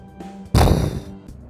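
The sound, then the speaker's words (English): A heavy stone door of a chamber slams shut with one deep, booming thud whose low rumble fades over about half a second, framed by a faint steady hum before and after. “Stone door shuts behind you with a heavy thud.”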